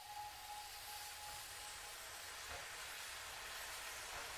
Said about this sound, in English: Back on board with their newly captured prize, the off-brake signal was given, and the train chugged its way to the town of Yale.